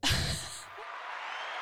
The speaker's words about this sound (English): Applause? Yeah, baby.